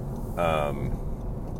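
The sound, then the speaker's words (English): Steady low rumble of a car interior while driving to work in Georgia, with road noise droning throughout and a brief tonal vocal sound rising over it near the start. “And obviously, you see now, I'm doing these podcasts on my way to work, but on my way home, I try to vibe out a little bit.”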